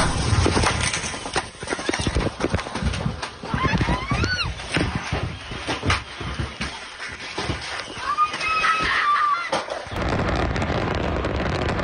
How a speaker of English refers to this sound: But listen, God, it sounds like so a scary. Friggin' war, and listen how big the explosions are. My God, that's so scary.